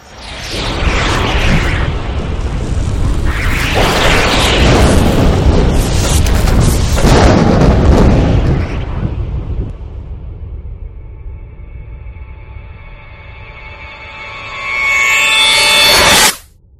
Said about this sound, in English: Another anvil almost smashes into you as you walk.